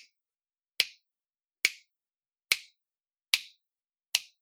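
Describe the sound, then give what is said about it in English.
Five crisp finger snaps at a steady, slightly slow rhythm, each a sharp bright click with a quick decay, separated by silence with no voices. “Those are finger snaps.”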